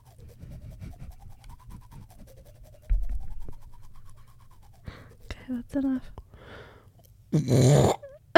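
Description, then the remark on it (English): A voice imitates someone brushing their teeth with a manual (analog) toothbrush: a steady, wavering hum, then short scratchy scrubbing bursts, ending in a loud, breathy hiss like spitting. “Tell me if this sounds like someone brushing their teeth.”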